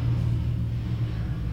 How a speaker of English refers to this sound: We're like right next to a highway. I don't know if you could hear the...